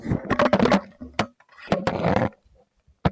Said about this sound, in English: I just knocked over my mic in my enthusiasm.